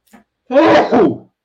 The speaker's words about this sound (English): We're flying into New York. I got to sneeze. Hold on.